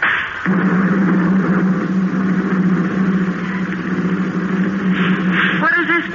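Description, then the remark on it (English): A loud, steady airplane engine drone overhead with a low, even hum that holds unbroken for several seconds. A brief voice cuts in right at the end. “It's an airplane.”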